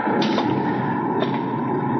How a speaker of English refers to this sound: The shutter on that window there, it's opening.